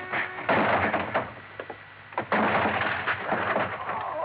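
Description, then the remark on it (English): The locked door of a small office is forced open: two loud bursts of rattling, scraping and banging, with a brief pause between them and a few sharp knocks in the lull. “The door of it was locked. Crothers, open up. Crothers. Okay, then I'll open it.”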